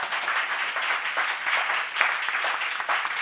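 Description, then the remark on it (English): Steady audience applause thanking a discussion panel, a dense wash of many hands clapping at once, sustained at an even, fairly loud level for a few seconds with no voices standing out. “So I'd like you to thank our panel”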